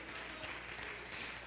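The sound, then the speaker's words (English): A crowd of people clapping their hands together, a dense, steady wash of applause throughout, moderately quiet, with no clear voices standing out. “I think you ought to clap your hands and say, I believe he's coming.”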